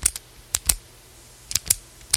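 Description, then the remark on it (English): Crisp plastic clicks and snaps from someone opening a new pack of pens, arriving in two quick bursts of three or four clicks with a quiet pause between and no talking. “One of the small joys in life. Fresh pack of pens.”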